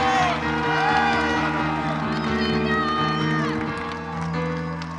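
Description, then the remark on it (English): An audience cheers, whoops and claps loudly in praise of God, continuous over sustained music with steady low tones, a dense wash of crowd noise lasting the whole five seconds. “Come on and clap your hands, all ye people. Shout into God with them.”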